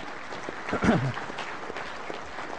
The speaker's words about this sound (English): By the way, for those of you that are ready to just give God a round of applause, that'd be a good time to do it.